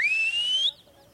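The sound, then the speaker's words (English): A young boy of the Amadiba tribe calls in the cows at sunset on the wild coast of South Africa with a single loud, piercing whistle. It holds one note that slides gradually upward in pitch for under a second, then cuts off sharply, leaving faint quiet background. “As the sun starts to set, a young boy of the Amadiba tribe calls in the cows.”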